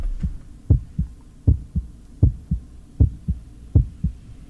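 A steady heartbeat with a clear lub-dub rhythm, about six paired low thumps at a calm pace, muffled, with no voices.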